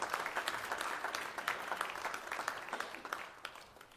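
A church audience claps for Jesus in praise during worship, a dense patter of many hands at a fairly even level for several seconds that eases slightly toward the end, with no voices over it.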